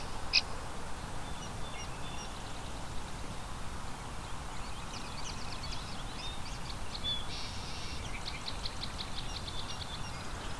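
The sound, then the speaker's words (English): Song sparrows and American goldfinches sing, thin trills and twittering phrases coming in bursts, mostly in the second half, over a steady rushing outdoor background of wind noise. “Lots of song sparrows here too. And American goldfinch are singing as well.”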